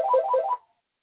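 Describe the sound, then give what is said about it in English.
A telephone rings once with an incoming call, a short warbling electronic trill lasting about half a second before cutting off into silence. It is clear, with no talking. “I didn't unplug the phone, so. I guess somebody got to answer that.”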